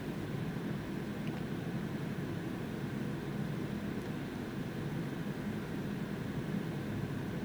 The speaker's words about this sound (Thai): เสียงแอร์ดังมาก